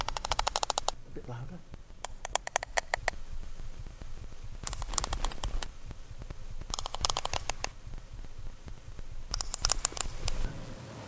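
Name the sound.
sperm whale coda clicks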